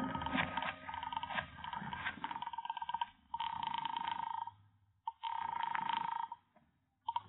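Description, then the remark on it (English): A telephone is picked up in a house and a call is placed, with loud bursts of ringing tone separated by short pauses and no voices. “I rushed back into the house and grabbed the phone.”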